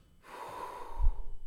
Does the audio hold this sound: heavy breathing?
yes